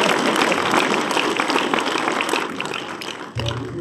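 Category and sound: crowd, audience applause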